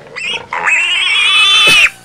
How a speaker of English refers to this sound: You want me to hit the pig just for you? Now you won't be able to hear it on your end because that pig is loud, man.